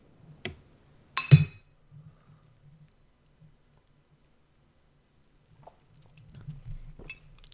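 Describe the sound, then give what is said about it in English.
A beer bottle clinks sharply, then soft gulping and swallowing follow as someone drinks beer straight from the bottle, with quiet wet mouth sounds near the end and no talking. “I drank that out of the bottle because I can't approach the glass just yet.”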